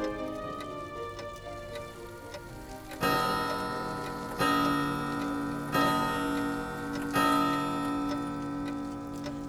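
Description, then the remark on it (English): A tall grandfather clock ticks steadily, then strikes four o'clock with four deep, ringing chimes at even intervals, each tone lingering and overlapping the next. “Her thoughts wander in a dreamy fashion as she converses with a tall grandfather clock.”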